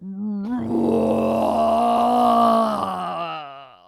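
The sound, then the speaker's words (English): A long, loud belch into the microphone, held for several seconds, low and rough with a droning, throaty tone that swells and then fades out, with no talking over it. “Should I just open a can and belch into the microphone?”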